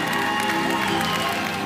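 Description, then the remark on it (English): An audience claps in a dense, steady wash of many hands, with no pause across the short stretch and faint voices blended underneath. “I want somebody to clap.”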